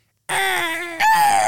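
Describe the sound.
A person imitates an eagle's scream, hurting their throat, with a strained, high-pitched vocal screech that holds steady, then breaks upward into a sharper, louder cry before trailing off slightly.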